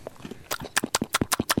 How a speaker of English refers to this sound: The fucking noise of the two of you chewing. That's like SMR. People will pay for that. We could get a Patreon and just chew into the microphone. People will pay for it.